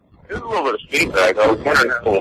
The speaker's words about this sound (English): Yeah, there's feedback, there's static. I mean, this is just like, it's a disaster out here. All the internet connections are horrible. All the phone lines are horrible.